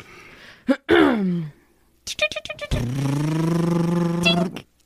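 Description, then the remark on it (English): A voice imitates the small engine of a mini riding lawnmower being ridden toward a cue ball: a rising whine, a quick burst of sputtering putts, then a steady buzzing drone held for a couple of seconds before cutting off. “Let me hop on this mini lawnmower and ride it towards the cue ball.”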